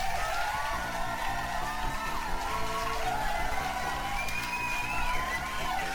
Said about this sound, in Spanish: Un aplauso.